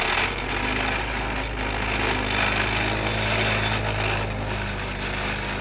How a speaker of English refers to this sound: Then Coronado, in his tractor, plants what looks like a stamp down on top. The tractor shoves the post into the ground, loudly rattling along the way.